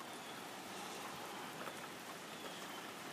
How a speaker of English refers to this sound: It's like raining. Can you hear it?